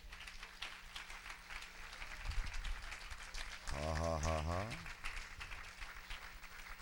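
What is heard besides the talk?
audience clapping and applauding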